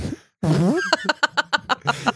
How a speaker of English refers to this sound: hit that fart. All right. Uh-oh. It sounds like that's a stinker.